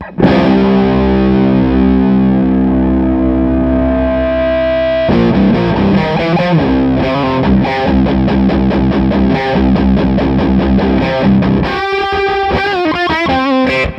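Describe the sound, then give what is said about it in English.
Heavily distorted electric guitar played loud through a Dale amp into a 2x12 cabinet: a held chord rings out, then choppy palm-muted riffing, ending in a burst of fast picked notes. No voices. “I wanna give the Dale a fair shot and actually hear it. So we plugged that into the 212 in there.”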